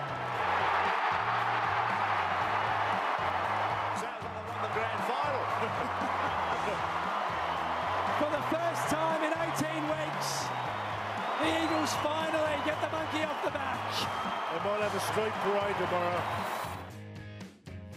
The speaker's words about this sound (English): Yes, the sound of 38,000 West Coast fans roaring their heads off after a five-point victory over North Melbourne at the weekend.